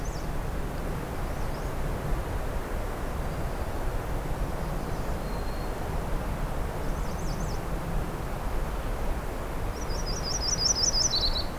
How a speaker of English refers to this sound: There's the black-throated green warbler as well.